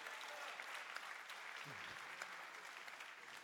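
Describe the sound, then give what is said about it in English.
An audience claps in praise to the Lord, a steady dense wash of many hands applauding together for several seconds, with a brief low voice rising underneath partway through. “Oh, come on, somebody give a hand clap of praise to the Lord.”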